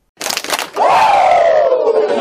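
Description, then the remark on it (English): A crowd claps twice in quick succession, then lets out a long, loud, high-pitched collective Ric Flair-style "woooo" that slowly slides downward in pitch for over a second, as a welcome for a guest. “How about we give two claps and a Ric Flair for my man,”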